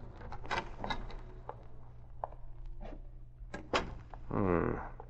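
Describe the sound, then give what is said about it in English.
A skeleton key scrapes and clicks in a lock, followed by a latch clack and a door creaking open as someone quietly enters the darkened offices of Biography, Incorporated, against a low steady hum. “Using his skeleton key, he quietly entered the offices.”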